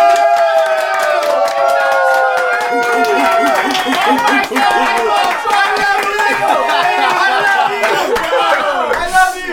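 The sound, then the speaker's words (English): A loud crowd cheers and whoops continuously for about ten seconds as a guest is introduced, many voices shouting over one another, with scattered clapping mixed into the steady roar. “Those people were not paid to cheer at all.”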